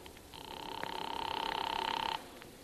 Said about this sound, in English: Oh, operator, hurry, will you? I'm ringing. Well, keep it up.